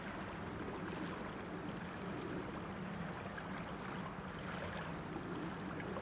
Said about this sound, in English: So I've come right down to the water's edge to get the song of the River Usk.